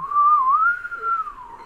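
A single clear whistled line glides smoothly up and down for under two seconds, fairly loud, with no talking.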